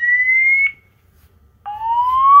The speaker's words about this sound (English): Jump out of bed like, what is happening? I don't know where this sound is coming from. It's the fire alarm.